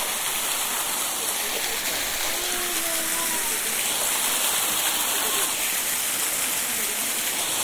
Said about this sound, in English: So it's a waterfall, and it's about maybe four times my height, falling vertically down through these branches. Oh, lovely. I think some of the children aren't sure about getting that close to this because it's quite a lot of water pouring down.